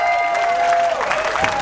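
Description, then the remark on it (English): An audience in Davenport applauds at a campaign event, many hands clapping together in a dense, steady wash that holds at an even loudness throughout, with a thin sustained tone humming faintly underneath and no one speaking. “He was going to clap until he was not going to hear from me again, and then he got sad for a second.”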